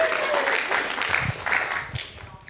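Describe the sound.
An audience claps steadily in a dense, crackling wash of applause, sustained and fairly loud throughout, with faint voices mixed in underneath.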